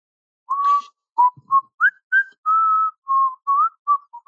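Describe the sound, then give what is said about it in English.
Someone whistles a short tune alone, a clear run of about nine notes with small rises and falls in pitch, one longer held note in the middle, fairly loud. “Who's whistling?”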